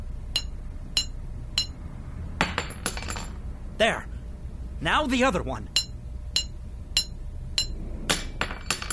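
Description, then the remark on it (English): Sharp, ringing metal-on-metal hammer strikes knock out door hinge pins so the door will fall open, in a steady, repeated rhythm, about a dozen blows, with a man's voice speaking briefly partway through. “Knock the pin out and the door will fall open.”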